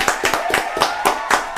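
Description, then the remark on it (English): A small group of people clapping, sharp overlapping claps in a brisk, steady rhythm with no talking over them. “Come on, can we clap it up, bro?”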